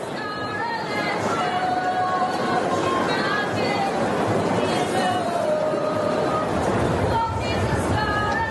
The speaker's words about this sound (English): Definitely some English voices in the crowd there.